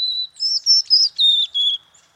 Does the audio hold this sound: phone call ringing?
no